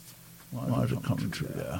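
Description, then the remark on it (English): A voice speaks for a little over a second after a brief quiet start. It sounds hollow and doubled, as if echoing back on itself, moderately loud. “Why is there an echo? It's coming through there.”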